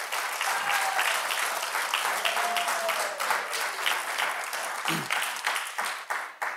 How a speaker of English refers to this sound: If you agree with me, would you give the Lord a round of applause?